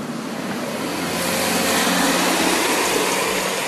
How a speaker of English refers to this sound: I love the sound of cars on a wet surface.